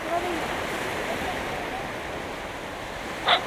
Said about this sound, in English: What is certain is that the temple has been destroyed and rebuilt at least 3 times before, as the island's edge has crumbled under the relentless pounding of the sea. The pace of erosion is expected to pick up now as sea levels climb.